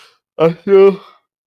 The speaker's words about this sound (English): Excuse me. I don't know why I'm yawning so much, but forgive me, y'all.